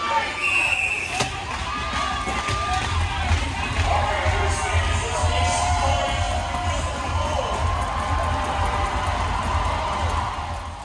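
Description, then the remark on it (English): A loud, dense crowd roars and cheers continuously at a Griz hockey game in the Glacier Ice Rink in Missoula, with sharp puck and stick cracks, whistles and shouts punctuating the steady wall of noise. “Yeah, the Glacier Ice Rink gets very, very loud because it's been so quiet for so long.”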